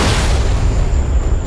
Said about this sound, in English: My well-timed explosion sent the creature pinwheeling through the bar's big picture window.